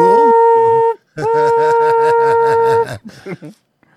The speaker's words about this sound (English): The train can be heard approaching.